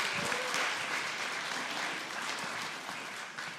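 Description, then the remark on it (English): A crowd claps steadily for grandparents being asked to come up, a dense, even patter of many hands that stays fairly loud throughout and eases only slightly toward the end. “And they're very embarrassed, so could you give them a round of applause, kind of encourage them a little bit?”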